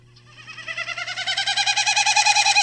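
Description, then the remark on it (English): A Wilson's snipe's winnowing: a rapid, pulsing hollow whistle that swells steadily louder over a couple of seconds, heard alone with a faint low hum underneath. “The Wilson's snipe. I'm just gonna I'm gonna play the sound first, just so that everyone can take a gander at what this might be exactly.”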